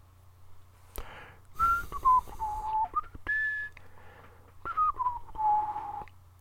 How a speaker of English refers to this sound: There's some text here in brackets that just says whistling, lots of whistling.